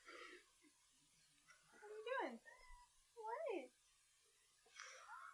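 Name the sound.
cat meowing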